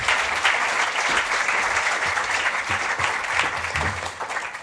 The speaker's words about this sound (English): So please give them another lovely round of applause while I leave the stage.